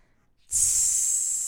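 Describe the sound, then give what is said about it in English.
A voice imitates hissing steam coming off skin: after a brief silence, a bright, sharp "tsss" starts abruptly and holds steady and fairly loud for about a second, with no other sounds. “That's steam coming off my fingers off my skin, vagina.”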